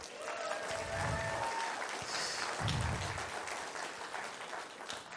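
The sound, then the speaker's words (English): A crowd claps steadily for about five seconds to recognize students who graduated, a dense, even patter of many hands at a moderate level, with a few low thumps and murmurs of voices mixed in. “Yes, round of applause.”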